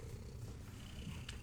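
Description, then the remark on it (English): A cat purrs in a steady, low rumbling drone that carries on continuously throughout, with a faint higher tone flickering briefly near the end. “Now that the baby is here. And is purring.”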